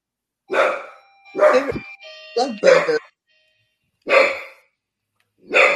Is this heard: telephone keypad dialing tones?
no